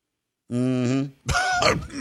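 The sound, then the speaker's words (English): A voice mimics a cough: a drawn-out, throaty groan followed by a harsh, raspy burst of breathy noise, fairly loud, with no other sounds around it. “When he coughs, could he cough tonight? Oh, he's definitely coughing today.”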